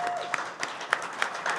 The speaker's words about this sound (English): This is the end of season one. Yeah, the end of season one. Listen to that round of applause. We made it.